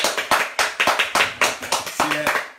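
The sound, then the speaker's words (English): A burst of loud hand clapping by a company's staff, about a dozen sharp claps in a quick, slightly uneven rhythm, with a short vocal whoop of "woo" rising near the end. “And besides, we clap a lot around here in the ATSJR companies, and we go, woo!”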